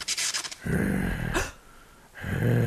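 A giant reanimated pickle breathes in heavy, raspy gasps: a hissing inhale, then low growling exhales with snorting bursts between them, loud and rhythmic, with no talking.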